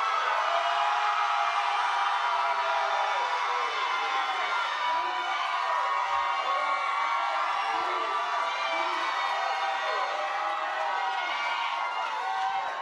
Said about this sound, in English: But for those of you who say, God, I got enough faith to just believe what you said, I need you to holler today louder than you've ever hollered in your life right now.